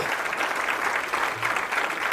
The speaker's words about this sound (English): Matter of fact, clap your hands for the Lord. Will you do that?